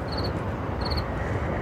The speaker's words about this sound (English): Again, another sign of the changing season as we move out of summer and into fall. They sing us through these changes. So we'll add our sound current to this cityscape. Moving a little closer to the cricket.